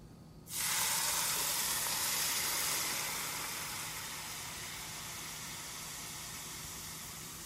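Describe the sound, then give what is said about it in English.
A loud, sudden sizzle as oil heated to about 340 degrees hits aromatics and a spice mix in a bowl, a bright crackling hiss that bursts in at once, then steadily carries on and eases slightly toward the end, with no talking. “All right, so our oil is ready. I have it at about 340. So I'm gonna come in and get nice and toasty with our aromatics and our spice mix.”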